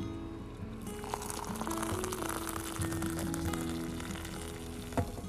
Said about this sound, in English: Now this, my friends, is what we wait for every morning. Delicious sound of Nescafe. Je t'aime beaucoup le café, je t'aime beaucoup Nescafe.